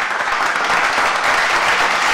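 An audience applauds a guest as she is introduced, a steady, dense wash of clapping that stays loud and even throughout, with no voices standing out above it.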